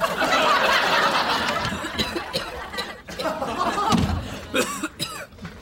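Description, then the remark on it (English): A person coughs several times in harsh, uneven bursts, while a crowd laughs and murmurs in the background. “Damn cough. I just can't shake it.”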